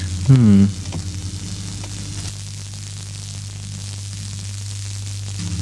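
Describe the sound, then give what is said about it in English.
Continuous crackling static, like a steady electrical arc, coming through on channel 6 of a radio, buzzing with a low hum throughout. A brief voice sounds near the start, then the sizzling noise carries on alone at an even level. “Yeah, it sounds like something's in a continuous arc.”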